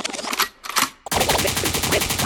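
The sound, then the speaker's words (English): A couple of sharp gunshot blasts ring out, then a dense burst of rapid-fire gunfire crackles on loudly and continuously, like a barrage of shots with no voices. “The code means rewind, the gunshot means forward.”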